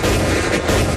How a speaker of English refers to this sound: Wow. Shots fired. Shots fired. Oh, bang, bang.